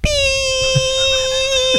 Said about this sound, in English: You got a weak whistle.